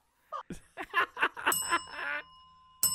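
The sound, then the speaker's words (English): A bright bell is rung four times, with a long, shimmering ring that hangs in the air and a final strike at the end, following a burst of snickering and laughter. “I heard four bells.”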